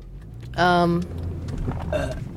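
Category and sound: human body sound, burp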